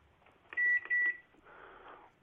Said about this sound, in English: That's the microwave, isn't it? What can you hear? I can hear a microwave.